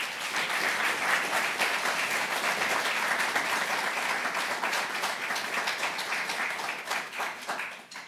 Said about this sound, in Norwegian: Gi dem en varm applaus og velkommen til scenen, Tore Bjørgo.